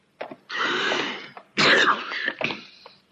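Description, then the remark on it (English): A man sneezes loudly, a couple of sharp, explosive bursts with short breathy catches between them, and no talking around them. “I do not have a cold. A man can sneeze, can't he?”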